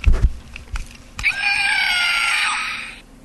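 A few soft thumps from a novelty quiz buzzer, one of the buzzers for a festive quiz face-off, being pressed, then a shrill, warbling squeal that rings out steadily for nearly two seconds before cutting off. No one speaks.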